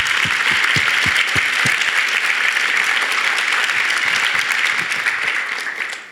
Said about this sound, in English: So again, if you don't mind, I think she deserves it. Probably deserves more than a round of applause.